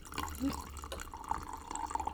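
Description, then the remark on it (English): Red wine streams from the tap of a Bota Box boxed wine into a glass as it is topped off: a steady, soft trickle with small bright gurgles and drips that rise slightly in pitch as it fills. “Getting that Bota box in her glass.”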